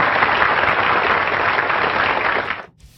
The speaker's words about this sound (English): All right, there is one more celebrity I'd like to bring out before we go, and I think you know who it is. It is none other than Roadkill Bill. Roadkill Bill, you get applause.